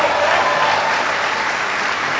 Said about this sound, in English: welcome the new head of Special Operations Command, General Joe Votel. Give Joe a big round of applause.